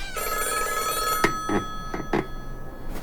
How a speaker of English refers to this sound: It was a hardline phone, an old one, black, with a rotary dial rather than a keypad. It sat like a vulcanized toad on the counter.